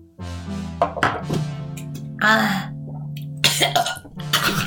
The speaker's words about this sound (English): You need to stop inhaling whilst you burp.